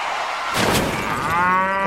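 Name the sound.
cow mooing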